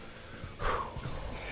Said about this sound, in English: I'm just breathing, man. I'm just breathing right finally now. Finally getting a chance to.